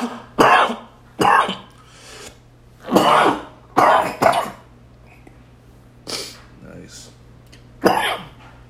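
A loud series of harsh coughs and throat clearing, about seven rough bursts coming in uneven fits with brief pauses between, over a faint steady hum.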